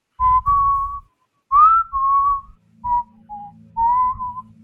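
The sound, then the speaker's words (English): Someone whistles an off-key, wavering tune in a handful of short phrases separated by brief pauses, with pitch sliding between notes, echoing off stone walls, over a low, steady rumble in the background. “and then this off key whistling going”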